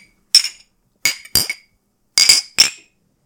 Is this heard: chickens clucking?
no